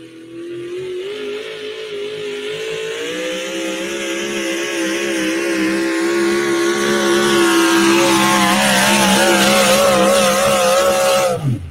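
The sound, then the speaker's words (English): A pulling truck's Sonny Leonard Racing Hemi engine roars continuously during a 335.55-foot pull, its deep harmonic drone climbing steadily in pitch and loudness as it strains under heavy load, then cuts off abruptly at the end. “put in a Sonny Leonard Racing Hemi, which is more closely related to a big block Chevrolet, and put the Ford Hemi in their Chevy pulling truck, which we'll see up here a little bit later.”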